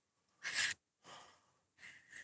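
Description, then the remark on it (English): A single sharp, hissing sneeze bursts out, followed by two softer, breathy rushes of noise a moment apart; the sneeze knocks a headset off the person's head. No one speaks. “Sorry, I totally sneezed, and I sneezed my headset off of my head.”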